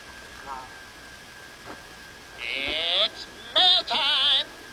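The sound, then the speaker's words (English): A donkey brays in a few loud, rasping bursts that rise and fall in a see-sawing rhythm, heard over a steady hiss of background noise with no one talking. “The horse goes, and the donkey goes, hee-haw, hee-haw.”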